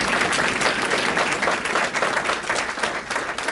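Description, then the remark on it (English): A crowd claps loudly and steadily for a woman who earned 45,000 in August, a dense wash of many hands applauding together that holds at an even level throughout, with no voices breaking through. “So give her a round of applause for that, because that's awesome.”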